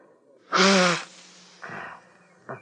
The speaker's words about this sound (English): I loaned you my one good handkerchief this morning. I got it here in my pocket. Be my guest. Blow your nose.